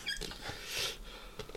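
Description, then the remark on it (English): A felt pen from Poundland that is running out squeaks and scratches across paper in a few short, high-pitched strokes, quiet, with no talking. “Oh, a little squeaky pen then.”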